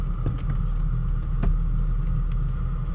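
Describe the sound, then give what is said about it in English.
A truck pulling away at an intersection: a steady, heavy engine rumble, its low drone holding level throughout with a few faint clicks and rattles on top; no one speaks. “Go, truck.”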